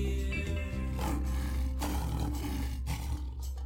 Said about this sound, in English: I hear a lion roaring in my ear.